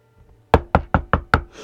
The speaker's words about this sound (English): I went down to knock on Pat's door